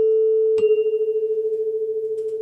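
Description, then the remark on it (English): A steady electronic tone made by two interfering sine waves wobbles rapidly in loudness, pulsing louder and quieter about ten times a second, with a brief click near the start and no voices. “Yes, there's almost like a series of peaks and troughs, isn't there? It's a bit louder, a bit quieter.”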